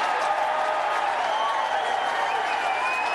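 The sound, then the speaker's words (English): A large golf crowd at the 16th hole at Augusta erupts in sustained applause and cheering as a ball falls into the hole after standing on the lip for 1.8 seconds, a dense, steady roar of clapping and shouting that stays loud throughout, with a few higher whistles or yells rising above it. “Look at this crowd, dude, though.”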